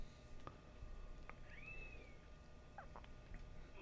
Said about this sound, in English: Sounds like a kitten in the distance.